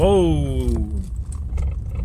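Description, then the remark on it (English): A UPS delivery truck rumbles by, a falling tonal whine at the start giving way to a steady low engine drone that continues to the end. “Whoa! UPS truck.”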